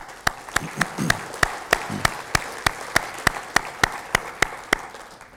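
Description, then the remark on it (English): Steady, evenly spaced handclaps in a round of applause for the Connective Excellence Awards winners, including the MPA Young Guns, about sixteen sharp claps at a brisk regular pace over a low background murmur, ending after a few seconds. “For those who weren't able to make it on the night, would you join me in a round of applause for our winners, including our MPA Young Guns recently announced?”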